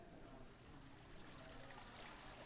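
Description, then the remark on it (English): Steady trickling water from an indoor waterfall in an office, a continuous soft splashing wash that stays even throughout with no voices over it. “This office has an indoor waterfall?”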